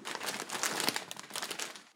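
Steady crinkling and rustling of wrapping paper, reused from delivered packages, being torn open on a present, a dense crackly burst lasting about two seconds with no talking.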